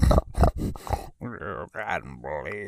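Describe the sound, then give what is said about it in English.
A person imitates a pig, snorting out four rough, quick grunts up close, then shifting into longer, wavering squeal-like vocal sounds. “And he also turns into a giant pig man.”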